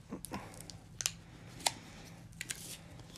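Someone struggles to open a plastic cherry berry snack wrapper, producing scattered sharp crinkles and crackles over a low steady hum, with no one speaking.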